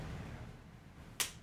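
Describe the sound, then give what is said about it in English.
A single sharp, loud slap of a right hand across a man's face cracks out suddenly after a quiet stretch, standing alone over a low background rumble with no talking. “I'm going to go right-handed across his face.”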